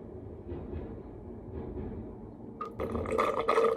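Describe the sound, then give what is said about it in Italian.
A tram rumbles past, a low steady drone that swells into brighter metallic screeching and clatter near the end. No voices are heard. “Sì, però avete rotto il con questi tram. C'è la quarantena. Cosa servono i tram?”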